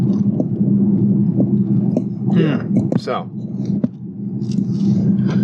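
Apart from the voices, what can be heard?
car interior rumble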